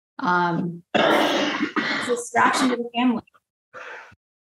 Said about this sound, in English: Okay, I lost your last words because somebody was coughing. I'm sorry.